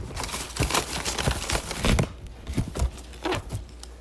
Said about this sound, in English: All right, so who wants to pick out the bag first? Blue pieces of paper are the questions.